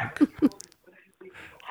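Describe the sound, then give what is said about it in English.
A beagle gives two short, loud barks in quick succession, followed by a stretch of quieter low rustling and murmuring sounds. “That's your beagle, isn't it?”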